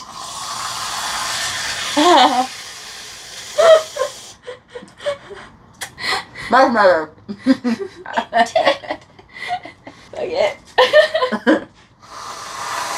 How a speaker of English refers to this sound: So, we just put Ready Whip on top of the most expensive coffee in the world. It's actually really good.